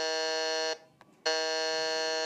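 A loud, harsh quiz buzzer sounds in two long blasts split by a brief pause, its rich electronic drone steady and piercing, as a contestant buzzes in first to answer a quiz question.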